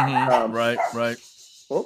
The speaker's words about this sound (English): That might be. Is that dogs from the thunder? We're getting thunder here. Yeah, at my house. That's exactly what it was. It was a reaction to the weather. Yeah, it's getting nasty here.